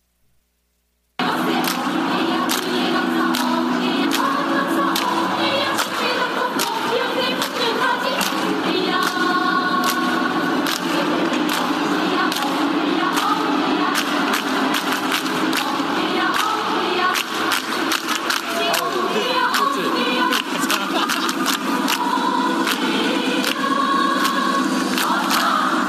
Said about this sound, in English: Like, for example, the North Korean cheer squad. So they all were dressed exactly the same and moving in complete unison. And here's what it sounded like.